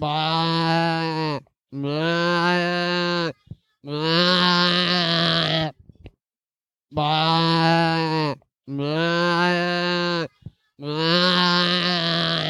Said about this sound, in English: What is that? There is absolutely no doubt that is a sheep. That is definitely a sheep. Okay, you're wrong on 2 counts. Oh. Firstly, it's meant to be a goat. And secondly, it's actually a human being.